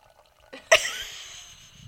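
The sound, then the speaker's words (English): A bright glassy clink is followed by wine pouring and splashing into a glass, fading off over about a second. “You putting the microphone up to you pouring?”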